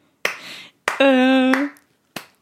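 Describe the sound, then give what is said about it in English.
Four sharp, crisp hand claps serving as a backing beat, in a loose, slightly uneven rhythm, with a short held vocal note sounding between the second and third claps. “Do you want me to clap or something?”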